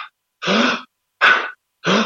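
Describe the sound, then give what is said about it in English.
Forceful Wim Hof method breaths pushed out through the mouth, three strong bursts of rushing air in a steady rhythm, each lasting about a third of a second, separated by brief silences. “So to give you a brief example, I do 30 breaths, which are quite powerful breaths. So you're breathing quite hard. So through your mouth, it's like, and then you just let go.”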